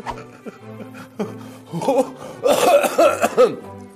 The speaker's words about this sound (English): And I'm the rheumatic coughing rasp signifying the end of the world.